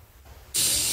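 A sudden, loud, breathy burst after a moment of near silence, like a forceful sneeze, its hissy blast running to the very end without trailing off.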